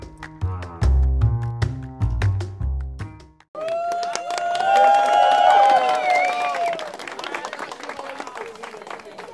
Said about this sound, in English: Cue in the applause.